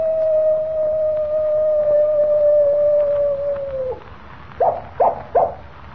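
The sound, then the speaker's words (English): A real coyote, trained as a pet to howl on a signal, howls in one long, steady note that slowly sinks in pitch, then breaks off into three quick, sharp yips. It's fairly loud, with no talking. “did you hear that? I certainly did, Jimmy. It was a coyote, and here it comes now.”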